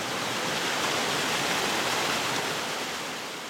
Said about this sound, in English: The nonprofit Illinois River Watershed Partnership maintains a lovely woodland sanctuary containing an emerald-colored lake fed by a rushing cold water spring.